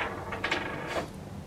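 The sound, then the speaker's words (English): Dice rolled by an audience member in the front row clatter across a table in a quick burst of light, hard rattling clicks, then a brief second skitter before settling, landing on a six. The sound is fairly quiet, with no voices. “So if I could trouble you, because you happen to be sitting in the front row, sorry, it's always been stated in the front row, to call the dice, say, oh, he can roll, that's all. Roll on the table.”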